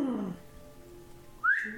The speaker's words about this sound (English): lets out a sharp and loud whistle.